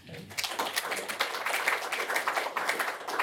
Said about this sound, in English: Thank you. I found that that's generally tends to be the easiest way to guarantee myself a round of applause. So thank you very much indeed.